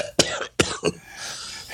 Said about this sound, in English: Excuse me. I have a feeling that cough was deliberate.